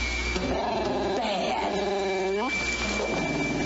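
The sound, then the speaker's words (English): A dog whimpers in a series of high, wavering whines that rise and fall, over a steady hiss of rain-like background noise, with no one speaking. “Bad dog.”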